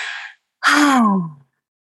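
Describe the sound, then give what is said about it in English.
A deep breath: a short airy inhale, a brief pause, then a long audible exhale that turns into a soft voiced sigh, falling in pitch as it fades. “I'll take a breath and I'll invite you to do the same.”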